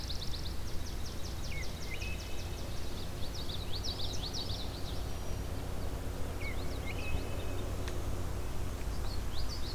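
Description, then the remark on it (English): A swamp sparrow sings a steady trill of quickly repeated notes, with a second burst and a few thin call notes over a constant low rumble of outdoor background noise. “There's different speeds to the swamp sparrow.”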